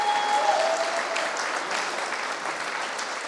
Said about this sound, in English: And let's just cheer them on as well. Round of applause.